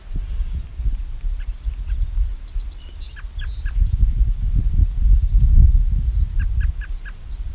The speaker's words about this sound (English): It's a katydid calling too.